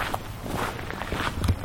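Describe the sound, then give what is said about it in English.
Footsteps crunch steadily along a dirt road in the countryside, a series of soft, gritty treads in an even walking rhythm with a faint hiss of background noise and no voices. “It's a nice walk anyway. I'm on a dirt road and into the country, into the bush, you know?”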